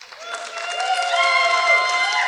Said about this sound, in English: If you think Mac won, clap your hands!